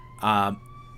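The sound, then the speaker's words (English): Sirens of several fire trucks wail at night during fires, a steady high tone running throughout, briefly swelled by a louder, richer blast in the first half-second before settling back to a faint background drone. “Oh, more sirens.”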